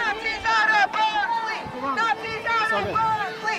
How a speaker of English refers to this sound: I was following a crowd of people who were yelling at some right-wing activists and chasing them away.